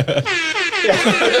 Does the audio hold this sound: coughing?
no